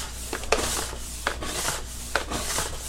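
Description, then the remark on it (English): The brush of a steam mop, with the steam turned off, scrubs back and forth across a floor in steady, raspy strokes, with a few sharper scraping accents and a constant low hiss underneath; no one speaks. “Obviously, it's not on, but I'm just demonstrating so that you can hear the brush go across the floor.”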